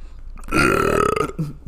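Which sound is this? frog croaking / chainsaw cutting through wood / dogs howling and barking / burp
burp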